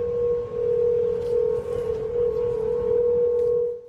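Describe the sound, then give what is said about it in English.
Wind blowing through the new sidewalk railings of San Francisco's Golden Gate Bridge makes a steady, eerie hum holding one mid-pitched tone with a faint overtone above it, droning over rough, gusty wind rumble that swells and dips slightly throughout, with no voices. “The bridge started making a ghostly humming and howling sound.”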